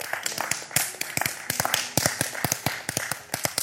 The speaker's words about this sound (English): Now, would you clap your hands and give God some praise?